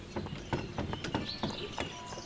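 Horse hooves clip-clop at a steady walking pace, a run of sharp knocks repeating about every half second, with faint chirping birds in the background.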